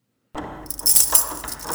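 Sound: keys jangling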